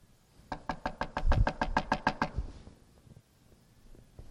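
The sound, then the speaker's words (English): A rapid run of about a dozen sharp knocks on a door, evenly spaced and fairly loud, followed by a brief quieter stretch with faint scattered taps. “When you go up to knock on somebody's door, how do you do it?”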